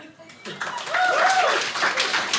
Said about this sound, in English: Round of applause if this is a herpy. Anybody? Round of applause if it's a derpy.